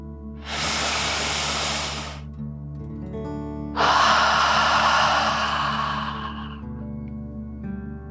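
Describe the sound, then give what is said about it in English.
A deep relaxation breath drawn in through the nose, then a longer, forceful breath pushed out through the mouth, both airy, with steady low background music underneath. “Imagining you are breathing fire, like a dragon. Okay, deep breath, in and out.”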